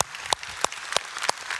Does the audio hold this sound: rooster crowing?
no